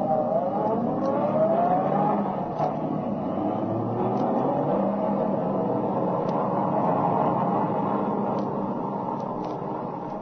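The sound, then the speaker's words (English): A car engine revs and pulls away, its pitch rising at first, then settling into a steady rumble that eases off slightly at the end. No one speaks. “Being in the same car with two brave, handsome flyers. But hang on, boys.”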